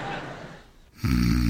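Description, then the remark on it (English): John Bickerson, a man in a radio comedy, snoring while asleep: a soft, breathy intake that fades away, then an abrupt loud, buzzing low rattle that holds steady to the end. No one speaks. “Stop what? That snoring.”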